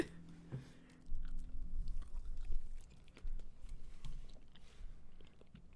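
Chewing of spicy food with irregular crunchy bites and soft wet mouth sounds, continuing steadily for several seconds with no talking.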